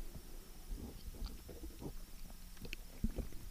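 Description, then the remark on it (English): Someone drinks a freshly poured beverage in soft, irregular gulps and low gurgling swallows, with faint wet mouth sounds and no talking. “All right, beverage has been poured, so here we go. Yeah. Bottoms up.”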